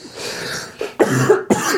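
A sick person coughs into the microphone in several rough, harsh bursts, the last two sharp and loud, with a throaty wheeze in between and no speech.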